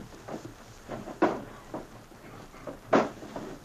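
Drawers sliding and knocking as someone rummages through them, with a few sharp wooden bumps and scrapes at an uneven pace, fairly close by.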